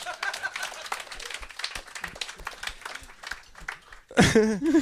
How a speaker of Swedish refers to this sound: En applåd.